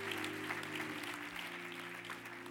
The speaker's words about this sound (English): Come on, give them a round of applause as they go back to their seats.